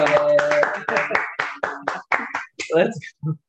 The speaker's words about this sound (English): You guys are too kind. Clapping.